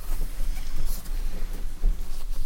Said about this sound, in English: I'm waiting on this breeze to stop.